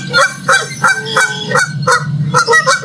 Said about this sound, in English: Yes! It's a Canadian goose. I think of the angry, hissing menace that usually stands in front of our car on the way to church, and we have to stop.